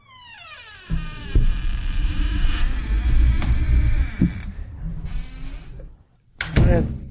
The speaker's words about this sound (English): One of the biggest doors I've ever seen. It's a giant door.